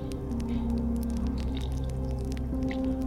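Low, drawn-out groans with slowly shifting pitch run throughout, dotted with small scattered creaks and ticks, as an old bookshop settles at midnight while snow flurries outside.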